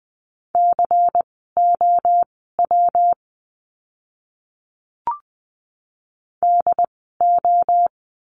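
Morse code practice words for the letter W, sent at 20 wpm: a steady, mid-pitched tone keyed into quick dots and dashes, three groups, a pause broken by one brief click, then two more groups.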